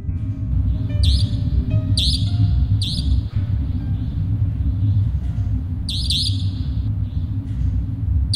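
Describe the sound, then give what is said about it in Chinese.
A nightingale calls at night in a quiet mountain forest, in short, bright bursts, a few spaced a second apart, then a quick cluster near the end, over a steady low rumbling ambience with no voices. “山林静谧的诡异，依稀又听见几声夜莺的鸣叫。”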